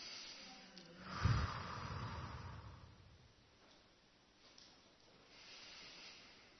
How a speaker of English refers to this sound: As the shapes get bigger, breathe in and then release as they get smaller. So we're breathing in now.